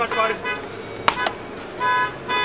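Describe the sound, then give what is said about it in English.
A single sharp gunshot cracks out mid-clip, fired by a man holding a child and standing outside a car at a drive-thru, followed by a softer second impact, over people talking and sustained tonal wailing like a horn or siren. “He has made one gunshot already.”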